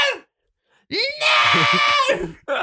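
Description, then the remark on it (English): A voice imitates a roughly 10-year-old child's drawn-out protesting scream at a nurse over a blood test, loud, rising into a strained, sustained wail after a brief gasp, then breaking off into a short final cry. “there was one time I really didn't want to have one done, so I started screaming at the nurse.”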